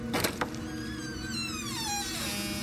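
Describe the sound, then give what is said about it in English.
A couple of quick knocks or clicks, then a slow, drawn-out creaking squeal of a hinge that bends in pitch as a house's front door slowly swings open, with no voices. “The door slowly opened to reveal an emaciated man with hollow eyes and a long, gaunt face.”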